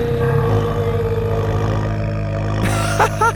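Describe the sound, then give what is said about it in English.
A giant plesiosaur named Bubbles lets out a deep, loud, rumbling moan, held steady for a few seconds before breaking into a couple of short, higher warbling cries at the end. “He could feel the vibrations in his legs as the aquatic dinosaur moaned.”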